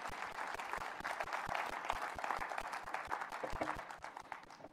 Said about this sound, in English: We good? Yeah, you can clap. Absolutely.